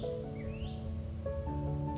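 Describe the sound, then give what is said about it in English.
Faint birds chirping, with a couple of rising, high-pitched calls over a steady low hum and background drone. No one speaks. “Those are birds chirping.”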